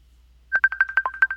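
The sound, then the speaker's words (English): A phone rings for an incoming call with a rapid electronic trill, a quick series of bright beeping pulses over a steady tone. It starts abruptly after a short quiet moment, and nobody talks. “I have a witness on the phone.”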